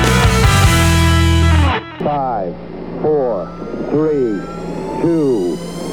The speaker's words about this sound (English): 5, 4, 3, 2, 1, 0. All engine running. Liftoff. We have a liftoff.